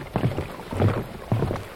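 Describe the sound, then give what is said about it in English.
Water sloshing inside a bottle in three quick surges, each a burst of low gurgling and splashing, fairly loud, with no voices over it. “The sound of my water sloshing around.”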